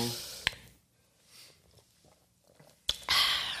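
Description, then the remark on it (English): Someone takes a sip of a drink: a soft click, then quiet wet mouth sounds and a short swallow, followed by a louder breathy rush at the end. “Let me take a sip.”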